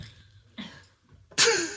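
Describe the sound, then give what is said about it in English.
A single harsh cough or throat-clearing bursts out loud, preceded by a couple of softer throaty sounds, with no talking around it. “Sorry, that was I have something called distant cough.”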